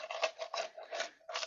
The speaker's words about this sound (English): Here comes the rabbit, the jangly rabbit pizza cutter. Oh, crunch!